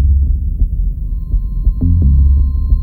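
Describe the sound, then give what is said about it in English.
Deep, muffled heartbeat thumps pulse steady under a dense low rumble, while a thin, steady high tone hums faintly in the background. No one speaks. “Heartbeat stops, a ticking clock, three cuckoos past the cuckoo clock.”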